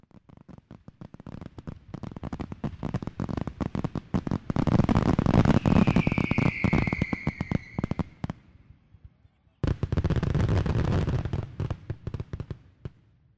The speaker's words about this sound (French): J'aime vraiment pas les feux d'artifice